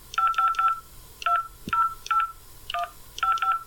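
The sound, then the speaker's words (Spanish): A telephone number, that of a real estate agency, being keyed in: about ten short, clear touch-tone beeps in uneven bursts, some quick runs and some spaced pauses, heard alone with no talking. “Aquí tengo el teléfono de la inmobiliaria.”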